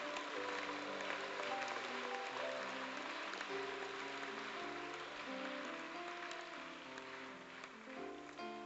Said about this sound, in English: I'm even surprised you are clapping this way.